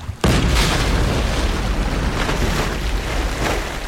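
Something gigantic breaches the water some distance away: a massive splash erupts with a sudden heavy boom, then a loud, sustained roar of churning, crashing water that rumbles on for several seconds without fading much.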